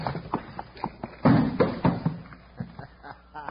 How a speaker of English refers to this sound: Drop that trap door in place. Yeah, here it goes.